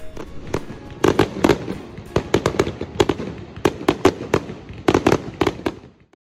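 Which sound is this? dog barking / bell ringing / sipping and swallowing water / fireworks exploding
fireworks exploding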